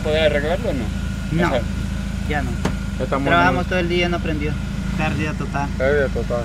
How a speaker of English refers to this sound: In the parking lot that rings the apartment complex, men with sweat-drenched brows were leaning over the hoods of flooded-out cars, trying to get them to start. Their efforts were mostly futile.